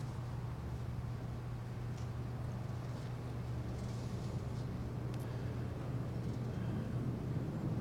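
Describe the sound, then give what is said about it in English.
A steady, broad roar of jet aircraft passing overhead, with a deep, droning hum underneath, holding an even loudness throughout with no voices. “The jet noises bring us to reality, doesn't it?”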